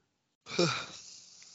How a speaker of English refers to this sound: Can't stop yawning. Sorry.